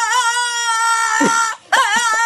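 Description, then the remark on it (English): A dog named Walter whines in a loud, high, drawn-out tone that wavers in pitch, breaks off briefly, then resumes with a few quick rising yelps. No one speaks. “The dog is so good.”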